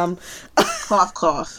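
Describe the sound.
A few short, voiced cough-like bursts follow a brief murmur, close and fairly loud, sounding like someone deliberately faking a cough or clearing their throat.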